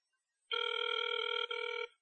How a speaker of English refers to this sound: Oh, look, I'm calling again. All right. Oh, noes. Oh, noes. Oh, it's ringing. Oh, it's ringing.